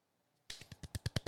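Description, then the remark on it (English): A short run of polite golf clapping: about eight quick, crisp claps in a steady rhythm, growing slightly louder, following a moment of silence, with no voices. “You know why we're golf clapping right now?”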